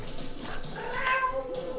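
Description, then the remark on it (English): A voice mimics an angry cat, saying hi in violent cat language with a drawn-out, wavering yowl that rises and bends in pitch over about two seconds, moderately loud, with no other talk. “I also say hi to. Bag of nails in violent cat language.”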